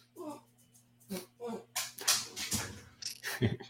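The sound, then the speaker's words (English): Dogs bark in a string of short, sharp, irregular bursts, fairly loud, over a low steady electrical hum. “Your dogs are as loud as mine.”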